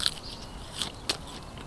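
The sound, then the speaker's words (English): Crisp, crunchy bites into a raw floret of sea kale, a perennial kale: three sharp, bright crunches spaced out over a second and a half, with quiet chewing between them and no voices. “So you got to try a floret.”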